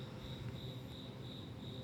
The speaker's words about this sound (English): The cricket. That was the perfect cricket.